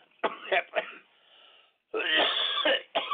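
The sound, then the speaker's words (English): A harsh coughing fit: a few rough coughs, a thin wheezy breath, then a long strained rasping gasp for air before another cough breaks out. “he says as he gasps for air.”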